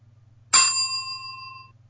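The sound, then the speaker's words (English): A digital, recorded bell ding sound effect strikes sharply and rings out with a clear, sustained metallic tone that slowly fades over about a second, with a faint low hum underneath. “No, that's a digital ding. That was a recording ding.”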